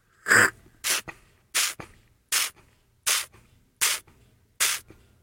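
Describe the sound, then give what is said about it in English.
Seven short, hissing slurps of air drawn sharply through the lips while tasting olive oil by the strappaggio method, evenly spaced about every three quarters of a second, fairly loud with quiet gaps between. “And then when you taste it, you want to do a method called strapaggio, where you create a repetitive spray effect like this.”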